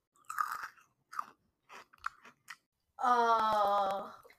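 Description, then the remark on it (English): Crunchy chewing on cereal comes in several short, uneven bursts. It ends in a long, steady voiced hum or groan with sharp crunching clicks still breaking through it. “It is chewing on cereal.”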